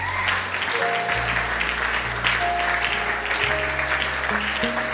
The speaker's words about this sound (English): That is what is called faith. That's a good place for you to clap.